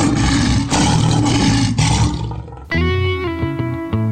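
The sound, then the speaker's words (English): Lions roar loudly in the Disney movie The Lion King: a long, rough, breathy roar rolls for a couple of seconds, then shifts into a deeper, more tonal bellowing growl. No one speaks. “Ooh, the Lion King mating season. This ought to be fun.”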